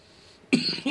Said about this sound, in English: I just hit that blunt. I was about to chime in, and then I felt a cough coming, so...